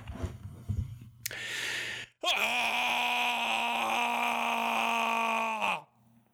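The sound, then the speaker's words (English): A man imitates a Klingon roar: a sharp breathy rush, then one loud, sustained, guttural bellow at a steady low pitch lasting several seconds before cutting off abruptly. “Let me see if I can do my Klingon roar.”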